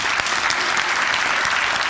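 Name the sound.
round of applause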